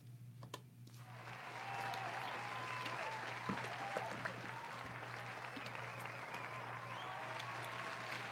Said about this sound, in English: He gonna get the full applause. He's getting a standing ovation. Standing fucking ovation.